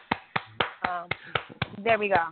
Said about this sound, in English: because, you know, my little clap with my skinny ass fingers